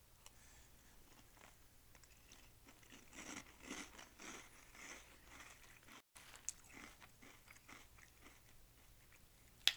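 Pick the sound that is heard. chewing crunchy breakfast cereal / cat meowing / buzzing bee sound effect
chewing crunchy breakfast cereal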